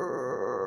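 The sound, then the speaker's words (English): A cat growls in a low, rough, steady rumble for under a second, fairly loud, with no other sounds around it. “Growling.”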